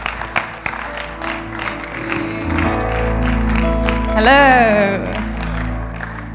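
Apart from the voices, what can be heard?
audience round of applause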